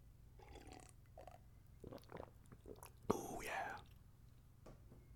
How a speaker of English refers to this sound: Quick sip of water, boss. Don't mind me, boss.